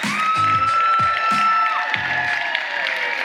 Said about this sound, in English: Yeah, everybody in the back, stand up and give a massive round of applause to our guest speaker today,